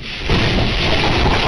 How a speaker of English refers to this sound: Hear the sound of these waves, some higher than 30 feet high, all the way up the California coast from San Diego all the way to San Francisco.